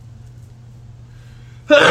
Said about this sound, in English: Oh my god! I'm about to sneeze.